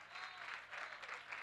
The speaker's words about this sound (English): Give the Lord one more good hand and clap of praise.